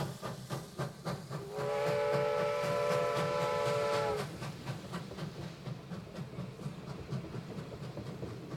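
A steam train chugs steadily with rhythmic puffs, and a loud, long whistle blows for a couple of seconds early on as the engine pulls away from a station in London. No one speaks.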